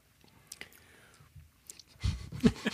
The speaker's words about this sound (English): Oh, yeah, let's see. Here we go. Mm. Listen to us sipping. I think when you toast, you have to follow through with a sip, right? You're supposed to.